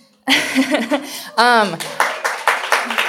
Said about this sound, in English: They deserve so much recognition for even just starting to tackle that, for all the preparation that's gone into it. A couple of them have done it numerous times, and so that just deserves a round of applause.